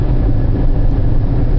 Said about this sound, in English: Right now, I'm driving through the country. It's one of my stops.